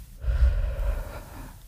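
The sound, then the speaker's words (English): A long, deep exhale flows out steadily for over a second, breathy with a soft airy rush, heard alone without any talking. “You're keeping your attention at your center. Exhale.”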